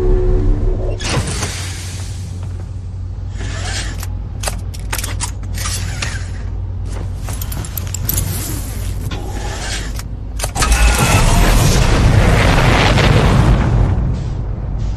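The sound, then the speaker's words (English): Mechanical clunks and whirring servos build through a video game spaceship's startup sequence, then a deep, roaring rumble swells into a loud, sustained launch blast near the end, with no voices. “Get into your ship, put on your spacesuit, strap yourself into the chair, and then you're ready to blast off.”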